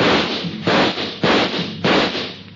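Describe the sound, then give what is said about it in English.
Four loud pistol shots from three police pistols, fired by officers on board a launch, ring out in a steady sequence, each sharp crack trailing off into a brief rumbling decay before the next. No voices accompany them. “He took a full volley of shots from three police pistols square in the chest.”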